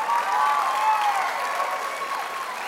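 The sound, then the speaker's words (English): An audience claps steadily for a 60-year-old, a dense, continuous wash of applause that stays loud and even from start to finish with no talking over it. “I cannot wait to tell Brother Jet that a 60-year-old got applause, and he didn't get any applause today that I remember.”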